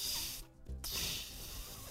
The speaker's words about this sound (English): I wasn't sure that my lips could even produce the sound, but I had no other option. I pursed my lips and I whistled with all my might.